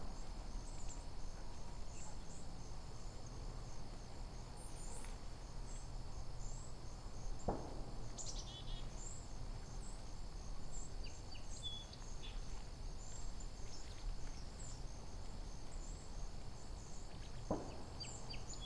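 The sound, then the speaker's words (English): Mostly white-throated sparrows with a few song sparrows give thin, high call notes scattered throughout, fairly faint, over a constant drone of crickets in a vineyard region, with a couple of dull thumps from automated air guns used to keep birds off unharvested vineyards. “These are mostly white-throated sparrows, so there's a few song sparrows in here.”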